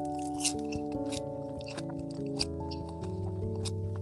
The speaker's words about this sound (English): I can hear you chewing. The thing is, I'm not chewing on anything. Actually, I'm actually watching a video. I hear chewing sounds, and I'm just getting angry for listening to it.